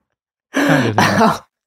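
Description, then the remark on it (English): A voice mimics a teacher's coughing fit with two harsh, throaty bursts back to back, fairly loud, lasting about a second with silence around it. “the teacher goes into a coughing fit because Jeremy does not have a catalytic converter”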